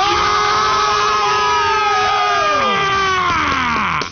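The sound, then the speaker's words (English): A group of people scream together at full volume on a count of three: a dense, sustained chorus of high, strained voices with wavering pitches that holds for about four seconds before breaking off. “I want you to scream as loud as you can where the boss has to come over, stop by your desk, and say, what the hell is going on?”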